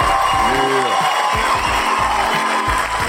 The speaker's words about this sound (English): and the crowd goes, wow. The crowd went crazy.